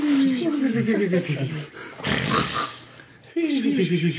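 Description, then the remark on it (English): A voice imitates a coyote's comical snoring as it sleeps: a grunting, pig-like inhale slides downward in pitch, a breathy wheezing exhale follows, and another low rumbling snore starts at the end. “Does he snore comically? Yes, of course.”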